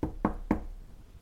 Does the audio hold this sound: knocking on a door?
yes